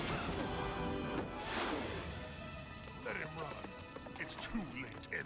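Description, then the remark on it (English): Horses gallop past, their hooves clip-clopping in a quick, uneven rhythm amid a busy, dense mix of action noise, with voices faintly mixed in beneath. “And the Machine Empire uses horses on the moon.”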